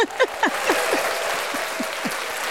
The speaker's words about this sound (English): So give yourself and your phenomenal titties a round of applause.